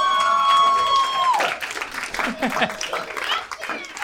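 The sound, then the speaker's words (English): A brief burst of applause from one lady in the audience, a scattered patter of clapping over crowd murmur, with a steady high tone early on that bends downward and drops away. “Little applause break from one lady, and I'll take it.”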